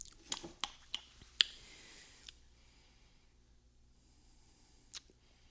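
Someone quietly sips cold coffee, with a quick run of small slurping and lip-smacking clicks near the start and one more later, otherwise silent.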